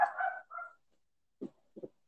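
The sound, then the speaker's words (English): A dog barks: a drawn-out, whining bark and a shorter follow-up, then a pause and two quick, lower barks. No one speaks. “Oh, my goodness, my dog.”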